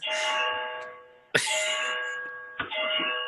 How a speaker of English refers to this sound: Were those the chimes of midnight?